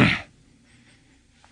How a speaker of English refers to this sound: I just clear my throat.